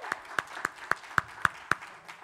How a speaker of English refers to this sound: Everybody give him a little hand clap for coming up.